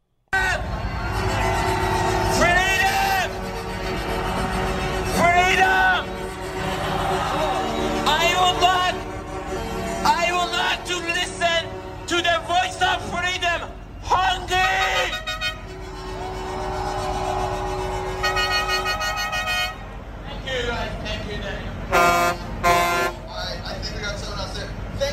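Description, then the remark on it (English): Truck horns blare over and over in long sustained blasts outdoors on Wellington Street in front of Parliament, mixed with a loud amplified voice from a stage on a flatbed crane truck and noise from a crowd surrounded by trucks, the honking nearly continuous throughout. “right in the center of Wellington Street, right in front of Parliament, there's a big flatbed crane truck with a stage set up and somebody speaking and sharing, surrounded by all these trucks with a crowd in front.”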